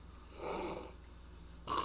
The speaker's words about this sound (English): Let's take a sip.